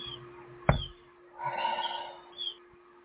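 A few faint, short bird chirps sound outdoors, with a sharp tap and a soft rustling stretch between them. No one speaks.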